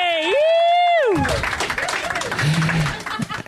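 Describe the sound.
A loud, drawn-out vocal whoop rings out, then an audience breaks into steady, dense applause for a few seconds, with scattered cheering voices mixed into the clapping.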